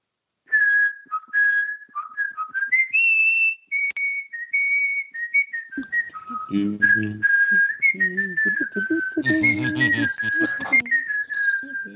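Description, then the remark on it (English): A person whistles a clear, lilting Mozart melody, steady and tuneful, for over ten seconds. Partway through, voices start talking underneath while the whistling carries on. “It's Mozart. You have very good whistling abilities.”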